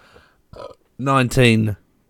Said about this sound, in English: Was that just a burp? just a burp. In the middle of your review.